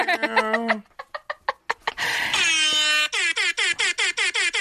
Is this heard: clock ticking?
no